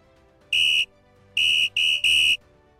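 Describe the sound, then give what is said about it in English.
A shrill referee whistle signalling the start of play in a water polo game sounds loud: one sharp blast, a brief pause, then three quick blasts in a row, with no talking. “And once you hear that whistle, it's game time.”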